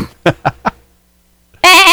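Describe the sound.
Someone imitates a bleating, sheep-like cartoon laugh in three quick pulses, then a pause before another voice bursts in loudly.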